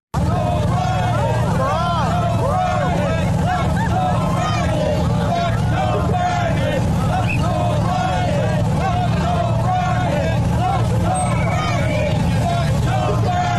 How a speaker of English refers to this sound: But this is Joe Biden leaving Westminster Abbey with Jill yesterday. And this is the reaction he got from the folks on the side of the road there in London.